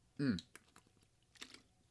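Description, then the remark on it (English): A person takes a swig of water: a short gulp with a brief voiced exhale, followed by small wet mouth clicks and a soft noisy swallow. “Had to take a swig of water there.”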